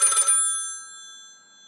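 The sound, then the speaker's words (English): A single sharp burst of an old-fashioned telephone bell, a rapid metallic clatter that stops abruptly, leaving bright ringing tones to fade slowly into silence. “She leapt up with her heart pounding, hand to the phone, and no weight in her stomach, a core with no weight, and her telephone ringing.”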